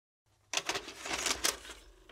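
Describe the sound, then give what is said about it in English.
A VCR tape mechanism sound effect: it clunks into action, then a fairly loud, noisy mechanical whir and rattle runs with a few sharper clicks and bursts. No voices are heard. “Cue the VCR sound.”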